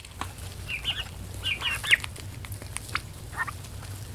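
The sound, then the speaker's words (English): Several high, thin peeps from turkey chicks, all young males not yet old enough for pasture, in a barn, come in small clusters at moderate volume over a steady low hum, with a few faint rustles between calls. “we passed by a barn with turkey chicks who weren't quite old enough for pasture.”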